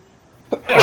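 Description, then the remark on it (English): A single sneeze: a quiet in-breath builds into a sharp, loud, hissing burst of breath that stays strong to the end of the short clip. “God bless you.”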